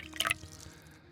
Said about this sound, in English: I'll pour you a drink, and let's get started.